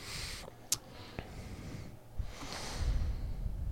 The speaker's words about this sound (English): So much breathing.